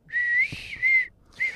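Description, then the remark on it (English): A high, clear bird-call whistle sounds in three bursts: a longer rising note, a shorter steady one after a pause, then a third that starts and cuts off. No talking. “Yeah, you got a bird? The bird. Bird is the word. Yeah, let me pull up the bird.”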